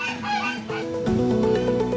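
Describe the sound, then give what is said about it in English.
A flock of guard geese patrolling between the inside fence and outer wall of a prison honks loudly and continuously as an alarm, their harsh overlapping calls piling on top of each other and growing more intense partway through. “A flock of geese patrol between the inside fence and the outer wall of the prison, sounding an alarm when anyone comes near.”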